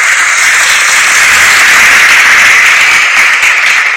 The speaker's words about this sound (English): You know, let's give a hand of applause to our politicians. Let's give a hand of applause. Yeah, yeah, yeah.